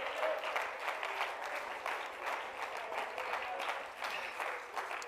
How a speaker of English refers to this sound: Let's clap our hands and praise him again.